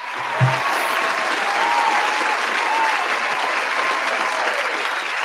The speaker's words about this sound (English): Please play the applause. Round of applause.